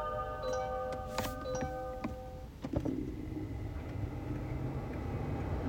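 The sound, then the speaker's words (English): A Kia Optima hybrid car starts up: a few electronic chime tones and sharp clicks, then a steady low hum of the car running, fairly quiet, with no talking. “It's a Kia Optima hybrid.”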